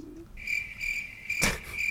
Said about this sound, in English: Okay, hold on. So I put the crickets in.